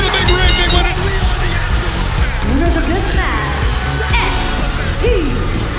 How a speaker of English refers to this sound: Just absolutely sensational main event. Fans are standing and cheering here, and well they should